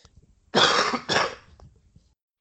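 Two harsh, loud coughs in quick succession, with a brief throat-clearing quality and quiet around them; no one speaks.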